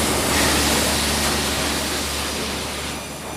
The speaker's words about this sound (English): That's the log just hitting the saw, the circular saws at that point.